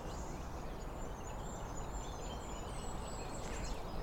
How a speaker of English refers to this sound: That sounds like a goldcrest here.